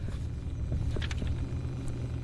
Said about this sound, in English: We're in drive mode. This is an automatic. Yeah. And off we go. What a smooth ride. We're pulling out of the solar garage in Midrand.